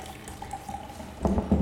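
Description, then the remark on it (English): A nitro drink is poured straight down into a glass standing on the table with a steady liquid trickle, then a few louder splashing bursts near the end, fairly clear, with no talking. “Oh, he's just pouring straight down. We're going to pour it straight down.”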